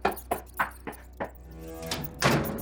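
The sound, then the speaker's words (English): A metal trap door in the gallery of a tower slams shut: several dull, evenly spaced thumps lead up to one louder, heavier bang with a brief metallic ring, with no voices. “The trap door in the gallery is metal.”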